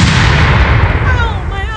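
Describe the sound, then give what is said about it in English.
A loud, booming cannon blast with a heavy low rumble that rolls on and slowly fades, trailed by faint whistling tones near the end. “If you guys ever shoot a cannon at me, I have a machine gun for you.”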